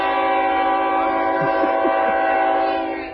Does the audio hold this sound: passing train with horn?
yes